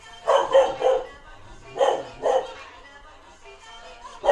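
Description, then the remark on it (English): A female puppy named Appa barks at a record player making a sound, short, sharp yaps, three quick ones, then two more after a pause, clear, with quiet background between bursts. “And as I did so, my dog, Appa, who was a puppy at the time, was not happy and she started barking.”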